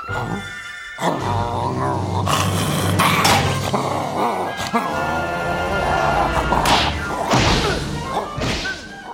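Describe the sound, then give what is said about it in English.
Repeated cartoon smashes and thwacks as Foamy the Freakadog slams Freakazoid into a statue again and again, loud, mixed with dog noises, frantic voices and busy music. “Foamy sort of rescues him, he ends up hitting Freakazoid into a statue about approximately 23 more times.”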